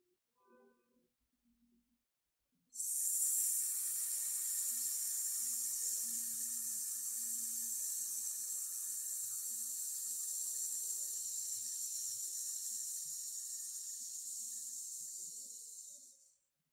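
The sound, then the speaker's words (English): A person inhales fully, then exhales in one long, steady hiss lasting about thirteen seconds as a sustained-hiss breathing exercise: a bright sibilant rush of breath that holds an even loudness and tapers slightly before stopping abruptly. “Please inhale fully and then release your breath on a slow, continuous hissing sound.”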